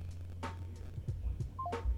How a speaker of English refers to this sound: That was your phone making that but we got it.